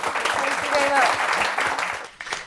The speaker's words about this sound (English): Okay, that is all we have time for. So if you can please join me in a round of applause for our two.